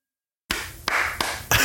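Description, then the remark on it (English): A few slow, sharp hand claps, applauding someone's obscure costume choice, spaced evenly over about a second, following a brief silence and sitting over a steady hiss with no one talking. “I'm applauding the fact that you chose a costume so deep of a cut that it is guaranteed that no one in your office knew what the hell you're doing.”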